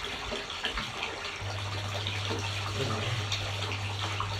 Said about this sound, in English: I'm just waiting for this water to top up this now, and then I'm going to go for the head wash